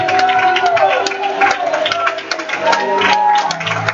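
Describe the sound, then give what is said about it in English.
A church audience clapping and shouting together for Christ, a loud, continuous swell of many voices with scattered hand claps mixed in, sustained at full volume for the whole stretch. “clap with a shout of a voice of Christ.”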